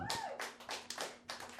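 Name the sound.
round of applause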